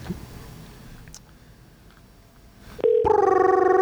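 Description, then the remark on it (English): After a few seconds of quiet background hum, the ringing tone of an outgoing phone call cuts in abruptly and loudly near the end, a steady electronic tone with no voices present. “Do you want to call him? Yeah, let's call him.”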